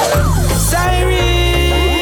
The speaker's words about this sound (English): Siren, you hear it? The cops is coming to get ya, get ya, get ya. Siren, it coming.